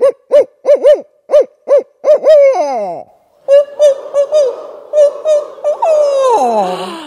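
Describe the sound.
A person imitates barred owl hoots: a rhythmic series of loud hoots ending in a drawn-out descending call, followed after a brief pause by a second answering series from a group mimicking the same pattern.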